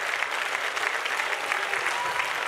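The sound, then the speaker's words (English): An audience claps their hands to the Lord in praise, a dense, steady wash of applause, many overlapping claps blending into a continuous crackling roar with no voices standing out. “And if you believe the Lord's going to help us, I want you to clap your hands to the Lord and give the Lord all the praise that you can.”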